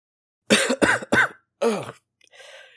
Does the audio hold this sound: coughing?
yes